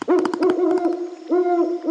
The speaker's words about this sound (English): Perched high on a branch sat a serious owl, her big eyes squinting, beak bent in a scowl.